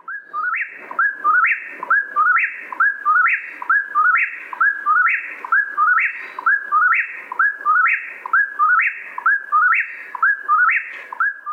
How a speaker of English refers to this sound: The cluck is really fast and kind of hard to hear unless you're close by to a singing whippoorwill and listening very carefully.